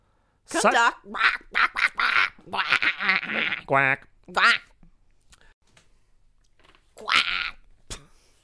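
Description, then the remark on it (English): A person imitates a goose quacking: a rapid run of harsh, nasal honks, a brief pause, one more honk, then a final loud squawk after a quiet stretch. “I'd like to change the horn in my car to a goose quack.”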